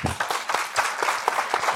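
A live audience applauds to vote yes on a question at a comedy show, a dense wash of many hands clapping steadily at moderate loudness, with faint crowd noise and a few sharper claps standing out.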